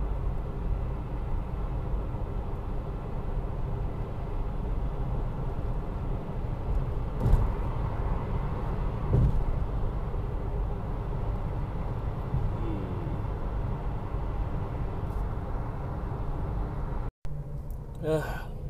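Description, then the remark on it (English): Steady, low engine and road rumble inside a car creeping through slow traffic, continuous and fairly loud, with a few soft bumps and a brief dropout near the end. “It's just been still in pocket one of traffic.”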